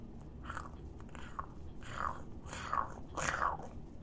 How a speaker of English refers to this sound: It was the sound of chewing.